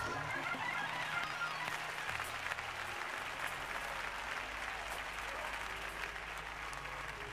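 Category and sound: crowd, audience clapping hands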